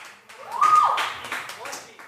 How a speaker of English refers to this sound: Oh, applause for